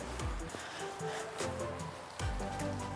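Heavy rain pours down outdoors in a dense, steady hiss, with occasional low thumps and rumbles of wind buffeting the microphone.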